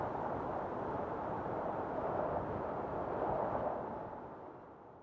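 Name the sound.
strong wind blowing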